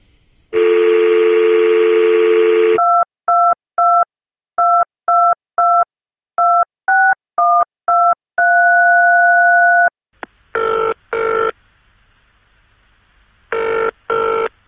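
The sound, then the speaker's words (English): A steady dial tone, then a quick series of touch-tone beeps as a phone number is dialed to make a call, followed by a brief tone and two rounds of a ringback tone, loud with no talking. “Well, then I guess I have to make a phone call, don't I?”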